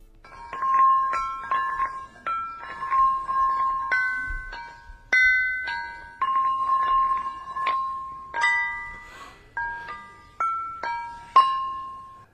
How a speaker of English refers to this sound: He lays them all out like a sort of instrument, like a drum kit around him, these massive rocks. And then he rubs smaller stones on them and taps them. And this is what it sounds like.